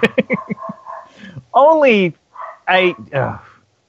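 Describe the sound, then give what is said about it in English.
A dog barks in several loud, yelping bursts, starting with short choppy sounds and then a few longer, wavering barks separated by brief pauses. “I think your dog is confessing that it's up for Secretary of the Army.”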